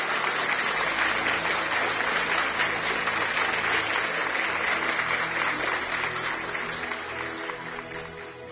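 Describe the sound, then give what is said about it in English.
An audience claps steadily in praise as a clap offering to the Lord, a dense, loud wash of many hands that holds strong throughout, then gradually eases off toward the end with no one speaking. “Give the Lord a mighty clap offering wherever you are.”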